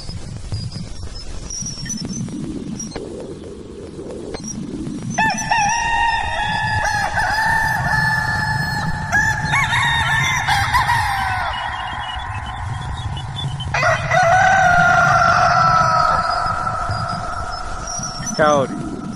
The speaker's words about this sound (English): It's a cock. That's cock.